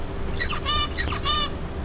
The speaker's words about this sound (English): At a later stage, the bird learns one of the transitions, BA, so it can only sing B at the start of the song bout. At a later stage, the bird learns the other transitions, AB, and then it can sing the correct song.